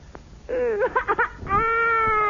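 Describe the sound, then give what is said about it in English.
A child cries out loudly, a wavering wail breaking into a few choppy sobs before rising into a long, sustained high-pitched yell. “Well, what are you yelling about?”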